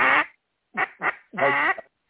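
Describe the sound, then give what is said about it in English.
Four raspy duck-call quacks blown loud, a longer one, two short clipped ones, then a drawn-out final quack, with no talking. “I didn't hear an A come out of it. Oh. Quack, A.”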